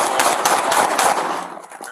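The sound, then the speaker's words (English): A rapid, uneven volley of handgun shots fired by a man at a restaurant at a car reversing with its door open: several sharp cracks in quick succession over a harsh, noisy wash, loud at first and then tapering off into quieter noise. “Brennan said he opened fire when this car started going in reverse with the door open.”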